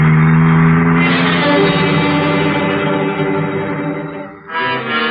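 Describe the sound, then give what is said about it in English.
A car engine drones steadily and loudly as the vehicle drives along for hours, trailing another driver, the hum dipping briefly near the end before picking back up. No voices. “For almost 3 hours, we trailed Crowder by car, never getting too near him, just pinpointing him.”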